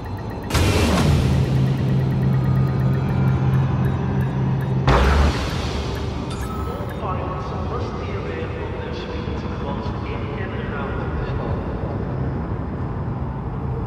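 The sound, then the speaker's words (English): Video game spaceship engines roar to life with a sudden burst, holding a steady low hum, then surge again after a few seconds into a loud, continuous rumbling drone. “Ship released. Engines engaged.”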